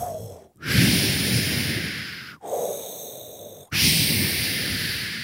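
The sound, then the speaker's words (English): A voice imitates heavy, menacing breathing: three long, loud, rasping breaths in quick succession, each separated by a brief pause, with no talking. “And that's not the worst part. The worst part is the breathing.”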